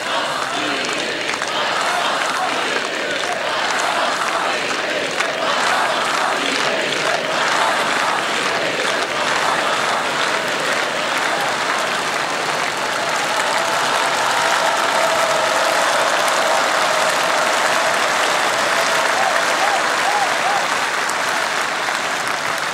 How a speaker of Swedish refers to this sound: Efter den inledande sovjetiska fanfaren hörs publiken skandera Geismas Pils Mednis. Geismas Pils Mednis.